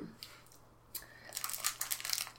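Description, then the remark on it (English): A Mars bar wrapper crinkles in a string of crisp, crackly rustles, starting with a brief crackle and then building into a steadier, louder burst of crinkling. No one talks over it. “Does anyone want ASMR right now? Me eating a Mars bar?”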